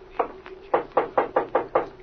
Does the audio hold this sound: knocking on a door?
yes